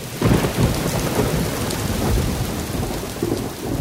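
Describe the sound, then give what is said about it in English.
Steady heavy rain hisses and patters throughout while low thunder rumbles and rolls underneath, with a few deeper booming swells, no voices present. “Singapore has a lot of thunderstorm days, almost every other day.”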